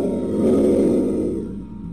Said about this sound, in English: I bear down on him and roar in his face. Tell me! Brioth roars back.